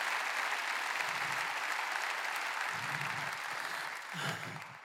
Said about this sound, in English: Oh, clap your hands like you're rejoicing because you remember what it's like to be the one.